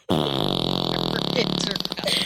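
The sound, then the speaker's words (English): A loud, buzzing vocal imitation of a fart, one long rattling blast held for about two seconds, forceful with a steady raspy tone. “And I grabbed that woman's intercom and I farted.”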